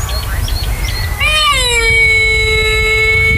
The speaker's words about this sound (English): and they're being woken by camels during the night. That's how they sound.